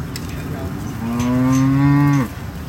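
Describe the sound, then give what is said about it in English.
A single loud cow moo rises at about one second and holds a steady, drawn-out tone for over a second before cutting off, with faint outdoor rustle around it, as cattle wait at a gate to be let into a new piece of pasture. “They're very loud. We're getting ready to open up the gate and let the cattle into a new piece of pasture.”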